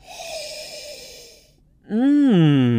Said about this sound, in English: I hope you're holding a whole bottle in your hand right now, because bottoms up, it's time for a real tasting, live, beginning with the sniff.